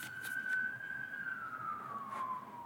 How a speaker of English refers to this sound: Seems like there are always sirens when I record.